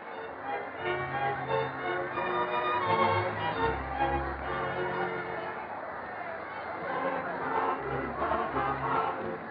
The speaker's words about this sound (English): Everyone out there is so happy to be alive and well again. They're dancing and cheering.